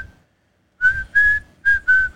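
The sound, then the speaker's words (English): A person whistles a slow, short melody, the Han and Leia romance music: one brief note, a pause, then four sustained notes in two pairs, clear and fairly loud with no talking. “I don't know what the Han and Leia romance music is, so I'm going to pull that up real quick.”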